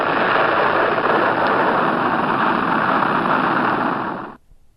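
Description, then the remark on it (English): A loud, steady rocket engine roar, a dense rushing blast that holds constant for about four seconds and then cuts off abruptly, leaving near silence. “I think there are many ways you can do this experiment, whether it be a rocket powered by an engine.”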